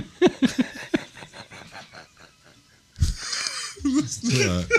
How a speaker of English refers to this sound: I got a smoker's cough, and I haven't smoked in 2 fucking years.